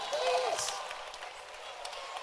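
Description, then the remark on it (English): An audience claps together for a man among them, a dense, steady patter of many hands that tapers slightly over two seconds, with a brief high whistle-like tone near the start. “Clap for him.”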